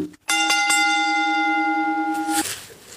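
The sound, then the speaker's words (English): A loud bell is struck a few times in quick succession, then its bright metallic tone rings on steadily for about two seconds before cutting off abruptly. No one speaks. “All right, I'm going to ring the bell.”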